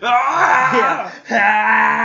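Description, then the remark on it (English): A voice lets out a long, strained, rising scream that imitates a cartoon fighter powering up. It breaks briefly for a breath, then surges back loud and sustained. “I did that a lot as a kid. A lot of just screaming, my arms like just flexing.”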